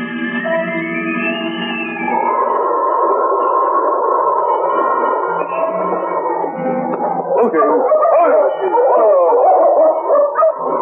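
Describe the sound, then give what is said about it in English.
A dog barks insistently at the door of a trading post, its voice stretching into long, drawn-out whining howls before breaking into a burst of choppier, excited yelps, with no one talking over it. “The great dog knew the men they had been following were inside.”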